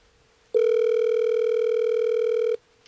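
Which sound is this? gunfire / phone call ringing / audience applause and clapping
phone call ringing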